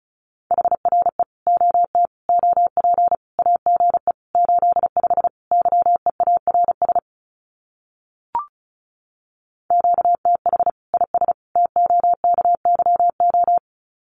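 Fast Morse code at about 35 words per minute sending common QSO phrases: a steady mid-pitched tone keyed into rapid dots and dashes, broken by a pause with a single click, then resuming. No voices.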